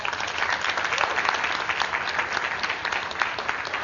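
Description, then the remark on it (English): A church audience breaks into steady, sustained applause, dense clapping filling the whole stretch at an even, fairly loud level with no voices standing out. “So definitely round of applause.”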